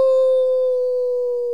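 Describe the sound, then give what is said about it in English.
A single long werewolf howl rings out, loud, holding a steady, bright pitch for its full length with no voices or other sounds around it. “get ready for some werewolves. It's Nightfall Full Moon.”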